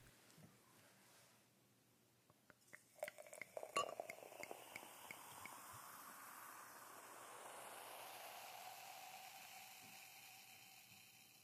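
A few quick glassy clinks, then a steady fizzing pour of champagne from a freshly popped bottle into chilled glasses for an Oscars toast, the hiss rising in pitch as it fills, fairly quiet, with no talking.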